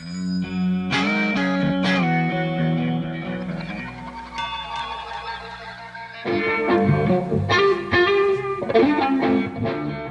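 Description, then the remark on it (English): A throat singer growls and drones, mimicking the gritty, buzzing tone of a distorted electric guitar. Sustained, overtone-rich notes shift and swell loudly over about ten seconds. “But Albert realized he could make similar tones just using his voice. I just got these effects in my throat.”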